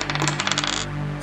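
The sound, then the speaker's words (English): Dice clatter across a table in a quick, irregular run of hard clicks that settles after about a second, with a steady low hum beneath and a short final rattle; the roll is for a thief character's lock-picking attempt in a BX rules tabletop role-playing game. “Shawnee needs to roll low on this one.”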